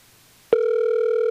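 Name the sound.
phone call ringing tone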